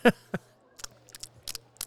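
Someone chewing gum: a string of irregular wet smacks and sharp clicks, some louder than others, spread over two seconds above a faint, steady low hum, with no talking.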